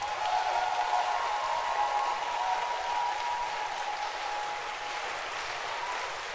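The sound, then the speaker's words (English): A church crowd applauds steadily for a representative sent by the Bishop, a dense wash of clapping that holds at an even, fairly loud level for several seconds with no voices breaking through. “Thank God, when Bishop decided to send a representation into our midst, that is where you clap.”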